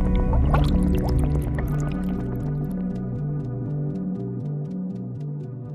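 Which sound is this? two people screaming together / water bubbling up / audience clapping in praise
water bubbling up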